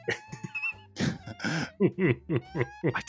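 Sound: geese honking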